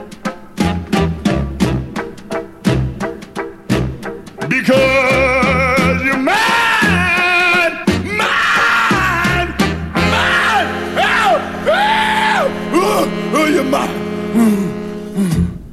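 A slow R&B love song opens with heavy, evenly spaced chord hits, then a raw, screamed vocal wails and howls over sustained band backing, loud and up front.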